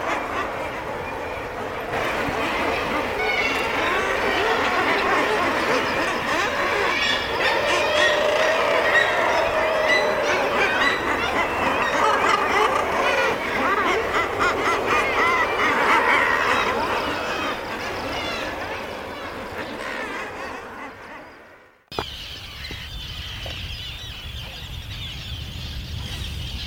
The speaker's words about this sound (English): I've grown to quite like it, because you associate it with this just extraordinary melange of birds. And yeah, on its own it's probably quite horrid, but I kind of quite like it. I'll leave you with the sounds now.